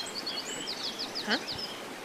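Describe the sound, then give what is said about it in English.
Birds chirp outdoors in a quick run of high, repeated tweets, fairly soft against a faint background hiss, with no one talking. “I know you can hear birds, but that's a lie. Oh, the birdies.”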